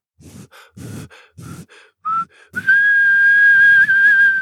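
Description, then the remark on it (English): A few breathy, airy puffs as someone tries to whistle, then a short tentative note and finally a clear, steady sustained whistle tone held loudly. “The little porcupine tightened her lips and whistled for the first time.”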